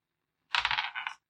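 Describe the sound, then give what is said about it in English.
Dice clatter across a hard table in a quick burst of rattling clicks lasting under a second, fairly close and moderately loud, with no voices. “Fuck that dice.”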